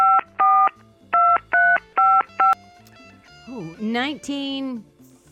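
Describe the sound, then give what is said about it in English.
Six crisp touch-tone dialing beeps sound in quick pairs and clusters, loud and clear, followed by a brief wavering, sing-song vocal sound near the end. “This day, what year, the touch-tone phone was introduced?”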